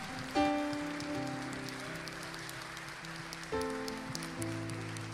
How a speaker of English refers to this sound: Can you give Kinsey and Matt and Brittany a hand clap?